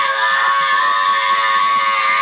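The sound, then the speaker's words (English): A child yells loudly, one sustained, shrill, high-pitched shout that fills the whole moment without a break and with no other voices. “Can you stop yelling so loud, please?”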